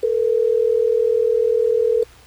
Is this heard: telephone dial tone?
yes